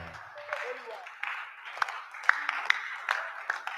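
A church audience claps together in a steady, dense wash of applause, with a few sharper, louder individual claps standing out, lasting a few seconds amid faint crowd murmur.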